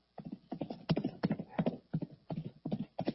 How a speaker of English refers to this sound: Can you hear the sound of the horses? Can you hear them? Can you hear them?